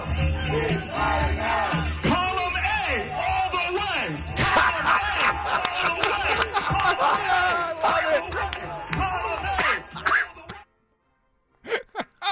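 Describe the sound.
A loud protest mob shouts and yells over one another, shouting down speakers in a dense, chaotic roar, with raised voices and cries rising and falling for about ten seconds before cutting off abruptly, followed by brief bursts of sound.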